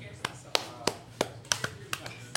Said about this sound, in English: We need your clap. And the clap. Action.